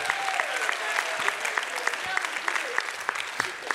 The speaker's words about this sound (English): Now walk off with you walk off like you just worked out, because give a round of applause again.